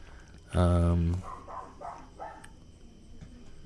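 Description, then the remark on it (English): A single loud, drawn-out dog bark rings out, followed by quieter voices talking in the background. “I hate that dog so much.”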